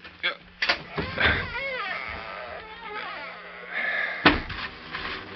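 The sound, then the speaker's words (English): A heavy wooden outside double door to an old cellar, wide enough for a wagon, groans open on creaking, wavering hinges, with a couple of knocks at the start and a solid thud near the end. “The double door is wide enough for a wagon. Open one.”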